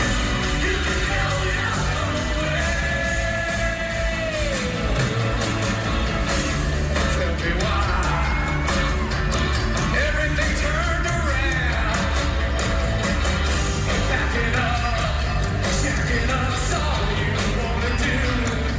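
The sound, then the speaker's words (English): A loud, muddy live concert recording made on a cell phone, with a singing voice over a dense band and crowd noise, the sound harsh and saturated, steady for the whole stretch. “You know, so many of these things are recorded on people's cell phones, so you get what you get, but that's pretty cool.”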